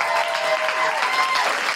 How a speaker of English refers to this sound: Big round of applause for Jamie Klingler from Reclaim These Streets. And Mandu Reid from the Women's Equality Party.